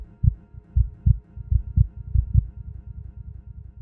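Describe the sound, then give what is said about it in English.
Low, short cello notes, plucked and bowed staccato, thud in a pulsing rhythm like a quickening heartbeat as a composed piece comes to an end, over a faint sustained tone, with no voices. “The combination of the cello, staccato, and pizzicato parts together gives the illusion of a heartbeat quickening as the piece comes to an end.”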